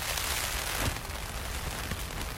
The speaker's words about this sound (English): We get up this morning with the rain thrashing at the Bothy. I've learned, even in these first days, that it sounds worse on a metal roof than it really is.